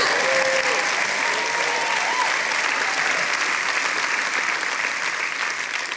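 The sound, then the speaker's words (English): A large church audience claps steadily for the church security team, a dense, even wash of many hands that holds for several seconds before tapering slightly at the end. “If you knew how crazy some Christians are, you'd be clapping better than that for the security team.”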